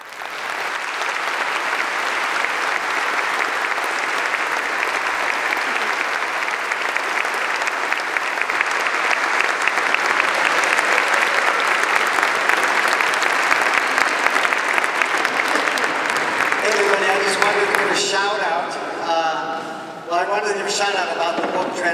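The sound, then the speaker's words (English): An audience claps loudly and steadily after a speaker finishes giving a religious testimony, a dense sustained wash of applause lasting most of the time, before a voice starts speaking as the clapping tapers off. “God bless you, and let all the glory and all the applause be for the Almighty God.”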